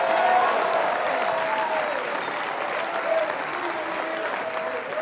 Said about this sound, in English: Well, go ahead, take 15 seconds, clap your hands, shout unto God with the voice of triumph.